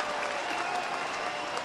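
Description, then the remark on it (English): A crowd of more than 17,000 at a Major League Baseball game rises to its feet as Jason Donald comes up as the 27th batter of a perfect game bid, cheering and applauding in a steady, dense roar of clapping and shouting, loud and sustained throughout without any break. “It's Jason Donald, and a crowd of better than 17,000 to its feet.”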